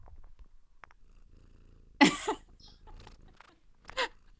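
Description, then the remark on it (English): A female cat purrs while walking over a person, a soft, steady low rumble running through the whole moment, broken by two brief, louder breathy bursts partway through and near the end. “I have a cat walking all over me here.”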